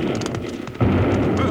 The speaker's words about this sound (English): It's a balloon. Yeah, and somebody's shooting off bombs from it. There it goes again. Yeah, the wind's blowing it this way fast.